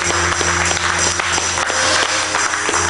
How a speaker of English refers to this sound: Woo! Clap your hands up in here. Hallelujah.